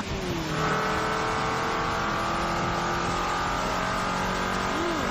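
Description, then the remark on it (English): A car engine revs steadily with a whining turbocharger tone, sustained harmonic hum and rising pitch lines over a constant rumbling roar, loud throughout without any talking. “No, that's your turbo charge thing. It sounds horrible.”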